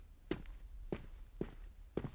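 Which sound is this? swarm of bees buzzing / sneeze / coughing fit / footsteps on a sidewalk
footsteps on a sidewalk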